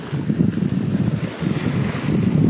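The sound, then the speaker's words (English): Steady wind buffets the microphone over the low, rushing wash of waves against a moving sailboat on the open ocean under blue sky and white cumulus clouds, a continuous loud roar with surging swells and no voices. “But all I can see is blue sky, blue ocean, and white puffy cumulus clouds.”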